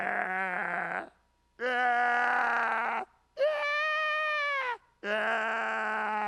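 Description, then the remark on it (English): A human voice imitates a sick sheep's bleat, four loud, wavering, drawn-out calls separated by short pauses, the third pitched higher and steadier than the others, with a strained, sickly quality. “Sounds like a sick sheep, but that's my best.”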